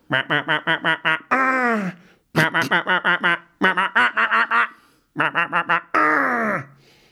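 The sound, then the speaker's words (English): A voice imitates mating seagulls squawking outside a window: three bursts of rapid, staccato harsh calls, each ending in a longer drawn-out wail, loud with short pauses between. “Do you know how seagulls do it?”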